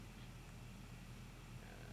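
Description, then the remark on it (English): A lion purring in a low, continuous rumble with a gentle pulsing rhythm, steady throughout, with no voices. “Oh, the lion's so cute.”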